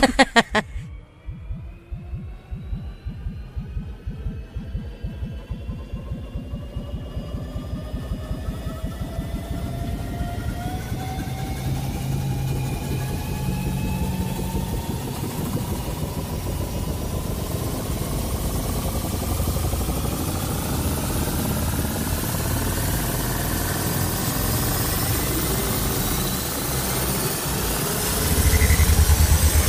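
A sci-fi time machine sound effect: a rapid, steady low throbbing like an idling engine under whirring tones that slowly climb in pitch, building over about half a minute with no talking.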